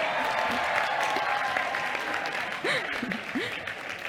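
An audience claps steadily for about four seconds, a dense, even wash of applause, with a couple of short rising whoops from the crowd near the end.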